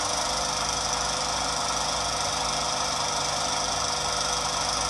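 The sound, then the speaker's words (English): A lawnmower engine sound, played from a sound app's lawnmower button, drones steadily with a rough, buzzing hum and a faint knocking rattle, holding the same loud, even pitch throughout, with no voices. “Add play lawnmower button.”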